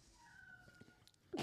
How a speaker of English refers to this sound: Fucking cat. The fucking cat.